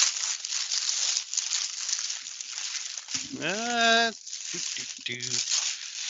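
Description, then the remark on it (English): Continuous crinkling and ripping of gift wrapping paper around a box for about three seconds as a present is opened, followed by a brief vocal sound and a few short voice fragments. “It's a box within wrapping paper.”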